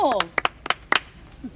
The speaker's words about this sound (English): I think I really need a round of applause. I want a bit more.